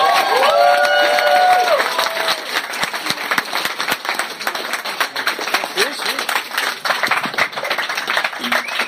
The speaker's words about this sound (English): Hey, gang, thanks for that nice round of applause.